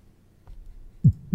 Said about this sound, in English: Heartbeat.